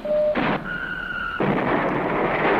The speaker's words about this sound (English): You can learn to operate these Lion-L missile launchers. And fire this IRBM launcher by pressing a button.